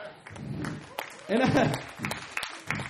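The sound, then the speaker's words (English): A church audience claps in a steady patter of overlapping hands, with voices and murmuring mixed in and a louder swell in the middle, applauding 99 kids attending kids' church on a Sunday morning. “And everybody's clapping except the volunteers who had to work back there with 99 kids.”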